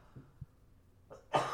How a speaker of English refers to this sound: Sorry, I have a cough.